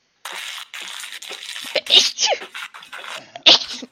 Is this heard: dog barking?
no